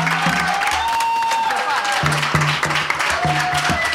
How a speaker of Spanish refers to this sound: Muchas gracias a todos y por favor un fuerte aplauso para la gente de Late con Santi Izaguirre y Facundo Lastra.